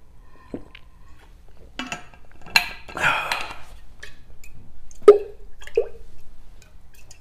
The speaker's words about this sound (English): That's our new opening. Clink.